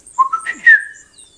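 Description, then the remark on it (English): A short, distinct signal whistle made by a person: a few quick pitched notes stepping upward, then a brighter, sharper note that slides down and fades. Clear, with no talking. “He stops, Ygritte, gives her a look, and a distinct whistle.”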